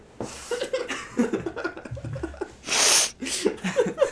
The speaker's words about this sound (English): Why'd you have to sniff so loud? Do you have a problem with the way I sniff? Yeah. That was like a Joe Biden sniff. You're gonna inhale the room.